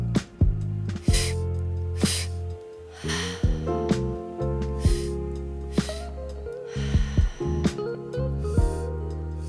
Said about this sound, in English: the inhales are a bit forceful, they're a bit active, and the exhales are really passive. In, out.